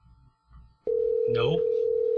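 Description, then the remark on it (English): The ringing tone of an outgoing phone call starts abruptly and holds as a loud, steady electronic hum to the end, with a brief voice-like sound underneath and faint murmuring just before. “If he answers the phone.”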